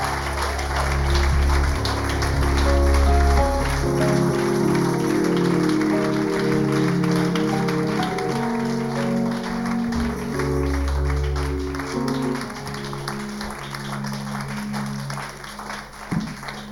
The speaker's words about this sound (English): Let's do a better round of applause for Jesus.